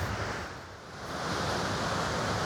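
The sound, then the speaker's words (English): A loud, steady roar of a waterfall's rushing water fills the scene, heard very close to the edge of the falls amid thick mist, unbroken, with a slight dip before swelling back to full force. No one speaks. “If you keep going forward, you can actually be very, very close to the edge of the waterfall itself.”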